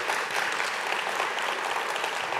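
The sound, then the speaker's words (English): A crowd at an event applauds its sponsors, clapping steadily in a dense, even patter of many hands that holds at a constant loud level throughout, with no voices breaking through. “Give them all a big hand.”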